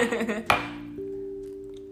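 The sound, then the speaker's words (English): Glasses of Prosecco clink together in a toast: one sharp bright strike followed by a sustained ringing tone, then a softer second touch that rings on steadily, after a brief murmur of voices. “So seeing that we do have a little bit of Prosecco, if you will humor me, cheers.”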